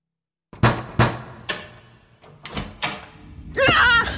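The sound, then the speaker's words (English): A door is clicked open with a run of sharp clicks and knocks spaced about half a second apart, followed by a voice beginning to speak at the end. “Proceeding to the door, reaching out and breathing out, I clicked it open.”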